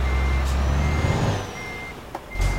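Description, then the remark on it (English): In a truck-driving video game, a truck's high-pitched reversing beeps sound over a deep, rumbling engine as it reverses to a trailer, the tone pausing briefly midway before resuming, with a short hiss near the end. No one speaks. “Reverse, please, truck.”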